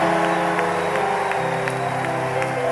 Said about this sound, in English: give the Lord a mighty hand clap of praise like you believe it. Clap like you believe it. Come on, clap like you believe it. I'm going to give you one more opportunity. Clap like you believe that you're the blessed of the Most High God.